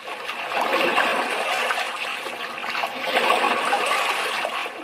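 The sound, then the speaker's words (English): Water of the dark Atlantic Ocean sloshes and splashes steadily around a small lifeboat, a continuous churning that swells louder midway through, with no voices. “Melvin Mundy rode a small lifeboat in the dark Atlantic Ocean.”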